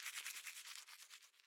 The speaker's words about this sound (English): Morning arrives. Shower. Brush teeth.